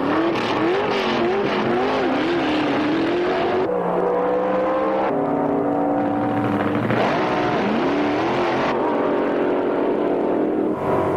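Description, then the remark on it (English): Loud drag racing funny cars, factory experimentals with test features, roar down the strip at the Pomona Winter Nationals, engines revving hard with pitch climbing and dropping through several abrupt gear shifts, continuous with no voices. “And everyone certainly likes the funny cars, which are factory experimentals incorporating test features not found on showroom models.”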